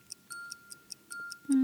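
A clock ticks steadily, about seven crisp, evenly spaced ticks with a faint ringing tone, then a loud low buzzer-like tone cuts in at the end. No one speaks.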